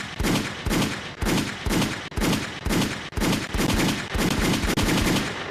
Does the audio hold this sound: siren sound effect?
no